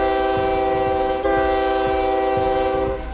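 A loud, sustained train horn blares steadily over the rumble of a rolling train, with rhythmic clicking of wheels on the rails underneath. No one speaks.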